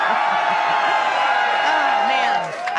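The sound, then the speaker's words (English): A large crowd at a Donald Trump campaign rally screams and cheers in a loud, sustained roar of many overlapping voices, with individual whoops rising above the din, dipping slightly just before the end. “If you want 4 more years of Donald Trump, let me hear you scream!”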